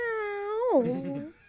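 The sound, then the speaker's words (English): A single long, drawn-out meow from a female pet cat, heard over the phone, that holds a steady pitch, then slides downward into a wavering, yowl-like ending. It sounds clear, with no other voices. “Sounds like a cat to me.”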